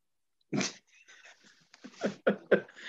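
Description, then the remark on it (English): A dog barks: one loud bark, then softer snuffling and growly noises, followed by a quick cluster of three sharp barks near the end. “Did the dog hear about the laptop? It's out here tripping, man.”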